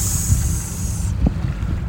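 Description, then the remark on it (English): A Malibu motorboat's engine drones steadily on a river in Portland, a low churning rumble with a thin high whine that fades out partway through, and some wind buffeting the microphone. “So I think this boat I'm looking at right now is a Malibu.”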